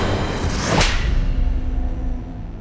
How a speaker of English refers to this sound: Rufus slapped John's face, and the prophet tumbled to the ground, confused.